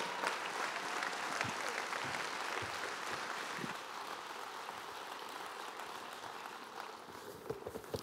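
An audience, standing on their feet, claps steadily for several seconds to welcome a visiting minister, a dense, continuous wash of applause with scattered sharper claps standing out and a faint murmur of voices underneath.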